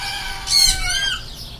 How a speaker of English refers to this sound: In the back of Robert is here, there's an aviary with lots of birds in it.